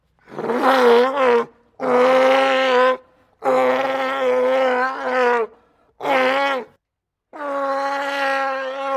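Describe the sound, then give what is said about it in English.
Five loud, guttural orc growls built from California sea lion barks and groans, each rising and wavering with pauses between them. Clear, with no talking. “using, was it California sea lions for the Uruks in the Two Towers, you know, as a sort of a base”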